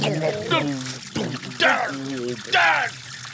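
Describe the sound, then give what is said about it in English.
Water pours and gushes in bursts into an elevator, its pitch rising as the elevator fills up, with a steady hum and voices underneath. “it's going the elevator's filling up with water”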